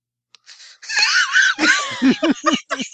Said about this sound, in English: That was his recommendation via slide whistle.